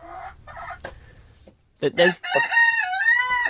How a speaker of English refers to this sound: Okay, so this morning, we may or may not be telling the truth, but I'm going to say we've got five chooks and a rooster in the studio with us this morning. Can you hear them? Can you hear them? Can you?